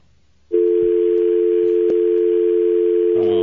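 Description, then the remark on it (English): After a brief moment of near silence, a loud, steady telephone dial tone from a broken phone line switches on and hums continuously without a break, with no voices over it. “Hey, that phone line's been broken all day.”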